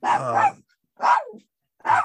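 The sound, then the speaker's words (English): A dog barks three times in quick succession, loud, each bark sharp with short silent gaps between them and no talking. “My dog had enough of this.”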